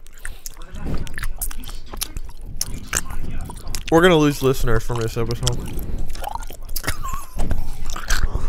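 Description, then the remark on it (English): Loud, wet open-mouth chewing, deliberately done in an exaggerated, annoying way, with smacking, squishy bites repeating throughout while a voice speaks briefly over it. “I'm purposely chewing in the most annoying way possible.”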